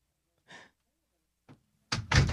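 A heavy door with a dial handle opens with a couple of soft clicks and creaks, then slams shut loudly, a hard booming thud with a brief rattle.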